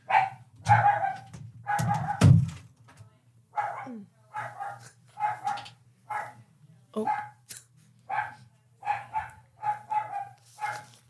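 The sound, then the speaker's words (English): A dog barks over and over in a steady, insistent rhythm, fairly loud, as visitors arrive at the house, with a brief stretch of overlapping voices and a whimper-like sound near the start. “Is that why he's barking?”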